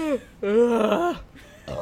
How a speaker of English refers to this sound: Sorry, I'm belching into the microphone.